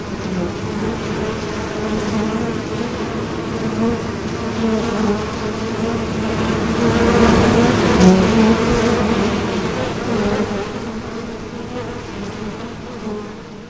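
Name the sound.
swarm of bees buzzing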